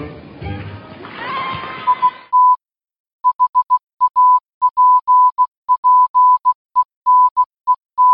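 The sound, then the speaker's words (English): Morse code beeps: a steady, single-pitched tone tapping out a quick pattern of short dots and longer dashes, clear and alone, following a brief burst of noisy, rough sound at the start. “I was going to do this whole episode in Morse code, but that will just take way too long.”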